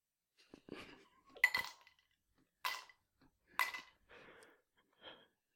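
Three ice cubes drop into a glass one by one, each landing with a sharp, bright clink, amid soft handling and rustling sounds, fairly quiet.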